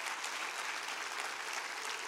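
An audience claps their hands together, a dense, steady crackle of many overlapping claps that holds at an even level for about two seconds with no voices.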